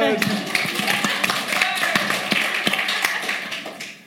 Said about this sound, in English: Round of applause for Peter.